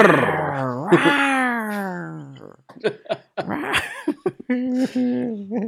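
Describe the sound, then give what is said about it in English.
Someone imitates a revving truck engine with their mouth: a long, growling vocal drone that swells and dips in pitch, followed by choppy, sputtering bursts of rough voice. “I just roll down the window and make it with my mouth.”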